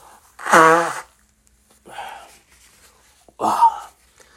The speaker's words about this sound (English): And hold on, I gotta blow my nose.